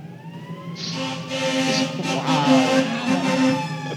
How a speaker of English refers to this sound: I have some sirens coming. Okay, let's pause here. Hopefully they will pass by my window quickly.